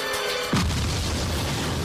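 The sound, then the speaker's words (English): A single muffled boom from a bottle bomb, made from bottles like Fanta bottles and tossed into the water to catch fish, bursts out suddenly, followed by a dense, low rumbling roar that churns on steadily without any voices. “So he's tossing them in the water. They're exploding.”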